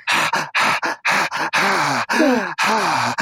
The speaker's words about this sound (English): Too much breathing. Too much breathing.